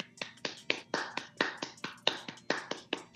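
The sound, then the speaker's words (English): A slow, quiet celebratory golf clap for the Miami Dolphins having the lead against the Chargers: one person claps softly about a dozen times at a steady, unhurried pace, alone with no talking. “Let's stop for 1 second just to give them the celebratory golf clap.”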